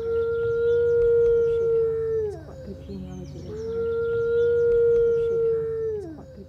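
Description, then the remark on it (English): Two long, steady howls of a Mackenzie Valley wolf (northwestern wolf), each holding one mournful pitch before sliding downward at the end, loud, with faint bird chirps scattered in the background. “Well, this is the howl of a Mackenzie Valley wolf or a northwestern wolf.”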